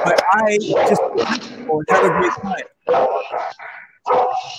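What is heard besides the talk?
dog barking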